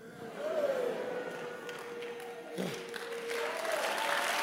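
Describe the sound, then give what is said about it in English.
An audience claps in a steady, sustained patter for several seconds, moderately loud and continuous, with a faint murmur of voices and a low tonal hum beneath it. “This is the worst clapping since I started preaching for almost, I don't know how many.”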